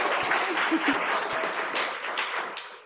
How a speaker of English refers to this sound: All right, and last but not least, Jen Dassel, everybody. Give Jen a round of applause.